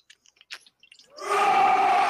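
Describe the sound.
After a few faint mouth clicks and breaths, a person lets out a loud, raspy, sustained roar imitation that builds quickly and holds steady to the end.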